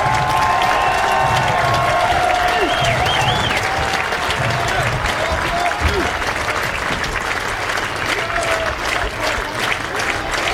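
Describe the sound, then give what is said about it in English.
A baseball crowd on its feet cheers and claps as the Raiders are down to their last strike, a loud, steady roar that holds for the whole stretch, with a few shrill whistles cutting through the noise. “Crowd on their feet.”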